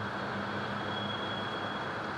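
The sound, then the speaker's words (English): Rail yard train traffic on a city's Southeast side during the pandemic forms a steady, continuous rumble with a faint high-pitched whine running through it, unbroken for the whole stretch and with no voices. “We have a rail yard, so rail traffic is still going.”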